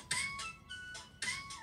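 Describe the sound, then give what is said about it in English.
A phone ringtone plays a repeating electronic melody of bright, bell-like tones on a frozen phone that cannot be turned down, sounding fairly quiet with no one talking over it. “Your phone's frozen. Yeah. I can't even turn it down or nothing.”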